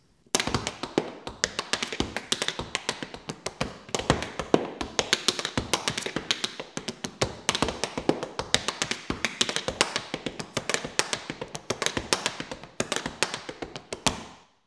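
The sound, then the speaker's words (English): A tap dance step learned from Henry Letang, who thought of bubbles while making it: a quick, continuous stream of crisp taps with light, bubbly tones in bouncy, uneven clusters, bright and sharp, played alone without voices for about fourteen seconds. “This is a step that I learned from Henry Letang, that he used to think of bubbles while making the step.”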